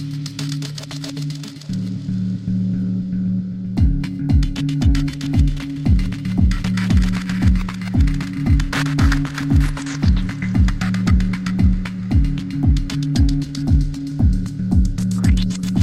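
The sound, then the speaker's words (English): A dub techno loop with a deep, droning synth chord and a steady four-on-the-floor kick entering after a few seconds, while reverb-soaked hi-hats shimmer on top; the kick is the only part not sent through the reverb. No one speaks. “adding that reverb to the hats is kind of the biggest change, and I think I really like how it sounds.”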